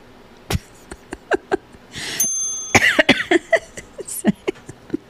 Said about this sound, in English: That made me cough.